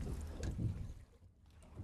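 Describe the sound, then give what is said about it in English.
A Calmac ferry or fishing boat's low, steady engine rumble drones, mixed with wind and water noise, briefly easing before swelling again as the vessel passes. “No, it's a Calmac or a fishing boat.”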